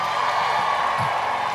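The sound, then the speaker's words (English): An audience claps and cheers to welcome the next act, a correspondent on the show Redacted Tonight, in a steady, dense wash of applause, with a few whoops rising over it, lasting the whole short moment without letting up. “Yeah, clap it up.”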